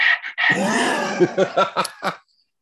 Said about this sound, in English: Is there a reason you're behind me making all that noise? My dog has decided to come and sit right behind me and just.